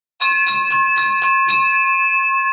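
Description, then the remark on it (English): A victory bell is struck rapidly about six times in a quick, even rhythm, then left ringing with a long, steady metallic tone that sustains to the end. Loud, with no talking. “Ourselves the victory bell.”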